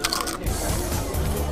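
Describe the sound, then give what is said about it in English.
Loud crunching of someone chewing crisp nacho chips, a few sharp bites followed by steady grinding chews with no talking. “Hey, you think you can crunch any louder? I'm sorry. You know I like nachos, all right?”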